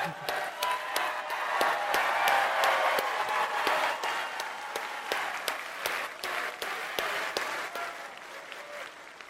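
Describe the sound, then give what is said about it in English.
At a stage event, a crowd bursts into sustained applause for actor Nick Searcy, who is in the movie. Dense overlapping claps hold steady for several seconds before gradually thinning out, with faint murmurs beneath. “Nick Searcy is also in the movie, and if you clap for him, I'll walk off the stage.”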